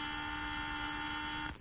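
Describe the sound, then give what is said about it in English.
A steady, harsh electronic alarm buzzer aboard the spaceship Luna after a meteor hit it drones on without a break, a flat buzzing alarm tone with a low hum underneath, then cuts off abruptly near the end. “And somebody turn off that buzzer, will you?”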